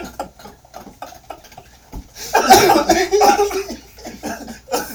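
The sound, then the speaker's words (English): A single loud sneeze bursts out partway through, harsh and breathy with a strained vocal edge, trailing off over about a second, surrounded by quieter murmuring voices. “God bless you.”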